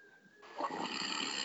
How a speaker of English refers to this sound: Well, you were snoring, so fuck you.